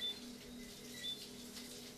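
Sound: rain falling at night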